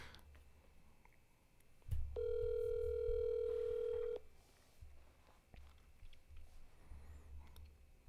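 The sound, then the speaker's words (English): A single two-second burst of steady electronic ringback tone, loud, as an outgoing phone call to a man rings on the other end, followed by quiet low background rumble. “He better answer. He never answers his phone.”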